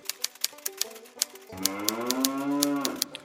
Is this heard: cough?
no